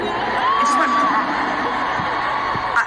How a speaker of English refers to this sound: all of a sudden, her piano started making boom, boom, boom, boom, boom, boom. Here's the moment. More rain. Literally, it was like a water park under the stage. You have no idea. Did you hear that? Did you hear the piano?